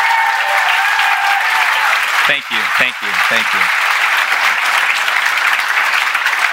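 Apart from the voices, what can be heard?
audience applause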